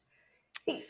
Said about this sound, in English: Oh, dear. Excuse me. Bless you. I died. I freaking died from a sneeze.